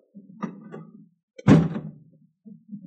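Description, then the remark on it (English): A door opens with one solid thunk that decays over a moment, surrounded by low muffled rumbling and shuffling before and after. “I'll open the door, will you?”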